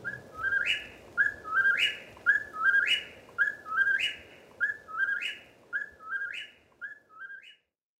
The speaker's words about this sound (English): Through the night, the incessant calls of the whippoorwill can be heard from New Brunswick to northern Georgia.